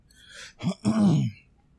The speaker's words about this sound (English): All right, I'm going to severely apologize already. Maybe no more than this one for the coughing. the seasons finally changed down here, and it seems like my old man body didn't appreciate it. So I'm not sick. I definitely have a slight sore throat.